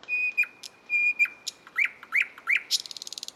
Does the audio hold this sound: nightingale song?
yes